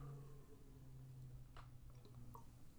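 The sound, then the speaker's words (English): A quiet gulp of water with small wet squishing and swallowing sounds over a steady low background hum, no talking. “Swig of water.”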